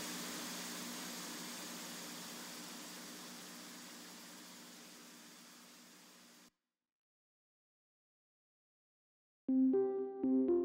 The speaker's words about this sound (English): As the reels of tape faded in a silent hiss